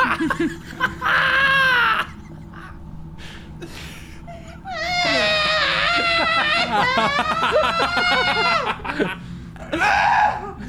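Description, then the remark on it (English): A woman lets out high-pitched, strained shrieks in several loud bursts, one short cry, then a long wavering stretch, then another brief yelp, with no clear words. “You kind of shrieked.”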